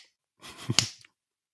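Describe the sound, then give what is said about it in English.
A few quick, muffled smacks like a fist striking an open palm, fairly soft, with a breathy rush of air around them and no talking; a man sitting and punching his palm while waiting in a queue for fish and chips. “And there was another man just like kind of sat, like almost like punching his palm, doing.”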